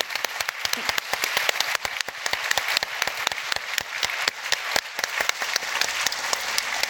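A crowd applauds steadily, many hands clapping in a dense, crackling patter that holds at an even, fairly loud level for several seconds with no voices over it.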